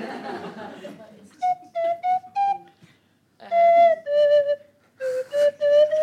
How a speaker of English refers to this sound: I bought my slide whistle, just in case you made me use it.